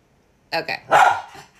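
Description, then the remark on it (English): Jet, a miniature schnauzer dog, barks: two quick, sharp yaps followed by a longer, drawn-out bark that trails off, fairly loud against an otherwise quiet background. “Jet is our dog. A miniature schnauzer, and he's very vocal.”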